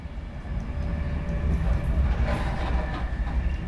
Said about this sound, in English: I'm on an express train heading north from London Euston to Carlisle. We've already passed Lancaster, and looking out the window, I can see the landscape's already changed.